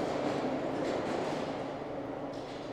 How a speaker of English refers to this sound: Love the sound of trains.